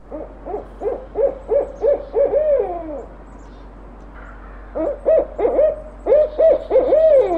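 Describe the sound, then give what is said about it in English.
A downloaded recording of a barred owl's rhythmic hooting series, loud, with rising and falling hoots in bursts separated by a short pause, then repeated with a wavering, cackling ending. “I did download Barred Owls, so I can play that right now.”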